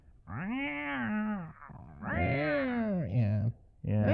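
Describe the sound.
A person voices a few drawn-out, wavering meow-like cries in quick succession, imitating a cat, fairly loud, with no ordinary speech in between.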